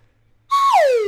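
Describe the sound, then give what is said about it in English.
After a short silence, a loud, bright whistle sounds, holding a steady pitch briefly before sliding smoothly downward in one continuous glide. “So do the whistle again.”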